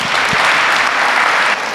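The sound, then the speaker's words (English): A crowd applauds with dense, steady clapping that stays loud throughout, easing slightly near the end, with no voices. “All right, give these guys a round of applause.”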